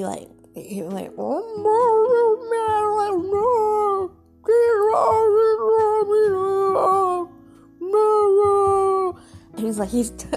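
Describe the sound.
A male pet cat yowls in long, wavering, talk-like meows, three or four sustained tones rising and falling in pitch, loud and separated by brief pauses, with a few shorter chirps at the start and end.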